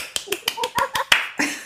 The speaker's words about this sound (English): Okay, so I had to take a lot of time to think about this, and I have come up with, drumroll please, bubbly. I don't really have a drum, but I could clap.